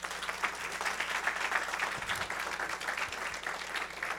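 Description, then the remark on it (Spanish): A church audience applauds together for the women who let their husbands attend the day before, a steady wash of many hands clapping at an even level for several seconds, with no voices over it. “Entonces vamos a darle un aplauso por esas mujeres que permitieron que su esposo vinieran ayer.”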